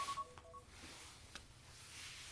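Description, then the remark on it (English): A quick run of short phone keypad tones, several beeps in rapid succession at the start, followed by faint background hiss and a soft click. No one speaks. “Silence the phones, please.”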